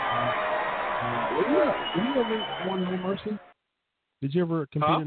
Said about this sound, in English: We've got some No Mercy trivia coming up, and I'll give you one more applause.